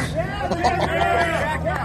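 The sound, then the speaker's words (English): A crowd of people outside an aikido studio shouting and cheering on a police dog, many overlapping voices forming a loud, steady clamor that fills the short moment without a break. “People are cheering the dog yeah. on.”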